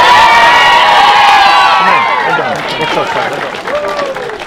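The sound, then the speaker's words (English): A crowd of voices gives three cheers for Scariff at Whitegate: strong rising and falling shouts that start at full volume and ease off slightly toward the end. “So, 3 cheers for Scariff.”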